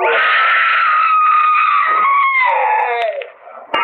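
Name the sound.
scream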